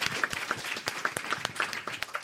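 An audience breaks into steady applause for a child after a demonstration of her brainwaves recorded with electrodes, a dense flurry of overlapping hand claps that holds at an even, moderate loudness throughout with no voices on top.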